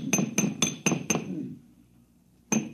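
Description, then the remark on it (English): Metallic banging on the condenser of an air conditioner someone is tinkering with; the condenser has a sealed power pack. Five quick, ringing strikes in an even rhythm, a brief lull as the ring dies away, then two more hard hits. No one speaks. “Yeah, if you keep banging at it like that, you'll crack the seal on the atomic shielding and your posterity will thank you.”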